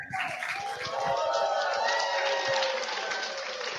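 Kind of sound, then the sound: crowd, audience crowd cheering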